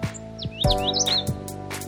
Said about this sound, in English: Cue the chirpy birds.